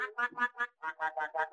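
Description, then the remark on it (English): A voice imitates the sound of a toy duck, making a quick run of about nine nasal, fairly loud quacks, with a brief pause after the first four. “I've got some seed, 1,000 caps, some ducks that go.”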